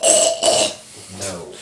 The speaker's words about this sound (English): Are you going to say something this time? Or are you just going to cough?